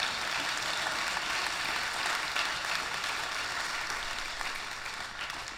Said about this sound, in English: Let's give the Lord a hand clap today.